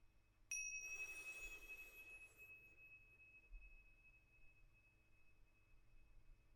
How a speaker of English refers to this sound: We're now going to slow our inhales and exhales down. We're going to synchronize our breathing with the chimes. Starting with the next chime, we'll take a long, slow inhale.